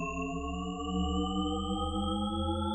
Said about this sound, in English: you're kind of just listening to the same section of audio looped effectively. And it creates this idea that it's a constantly rising pitch